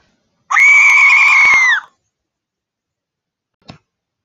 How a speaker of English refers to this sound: screamed at the top of her lungs for 7 seconds.